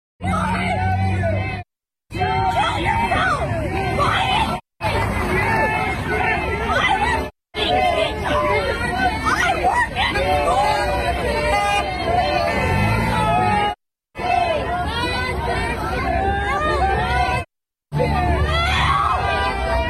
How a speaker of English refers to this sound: Here's a protest in Bend, Oregon, a beautiful, beautiful town, liberal town, where they're protesting the lockdowns, and a teacher drives by.